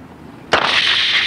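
After a near-silent moment, a sharp jolt gives way to a loud, steady high-pitched hiss of bicycle brakes grabbing as trained technicians test them, continuing strongly to the end with no voices.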